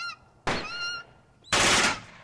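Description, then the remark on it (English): Two loud, sharp gunshot blasts about a second apart, fired at vultures, each a harsh burst with a short noisy tail, while honking, goose-like bird calls ring out around them. No one speaks. “They shot one.”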